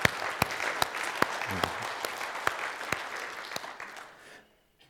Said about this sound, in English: Last year was a really great year at Mount Tabor Christian Church, so will you give yourselves a round of applause for 2017?